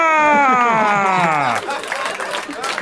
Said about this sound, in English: You applaud, but we all know that was okay.